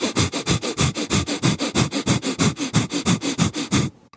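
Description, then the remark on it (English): Rapid, forceful breath-of-fire breathing, sharp fast breaths forced in and out through the nasal passage, about five sharp huffs per second in a steady pumping rhythm, loud and alone, stopping abruptly near the end. “And you're just breathing really sharp, crisp, fast breaths in and out.”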